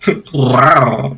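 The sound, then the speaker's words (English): A person imitates a Godzilla roar: a short grunt, then a loud, drawn-out, gravelly bellow that swells and fades over about a second. “There you go. It's the perfect Godzilla.”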